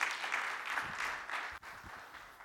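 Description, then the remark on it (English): A crowd applauds steadily, many hands clapping in a dense, sustained wash of sound that holds at an even level with a brief dip near the end, welcoming a guest speaker, a doctor, who is invited up to the stage. “And give her a round of applause.”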